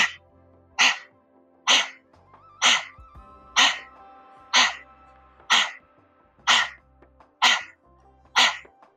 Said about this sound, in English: And now we're going to do doggy panting. We're going to stick our tongue out and do the breath of fire.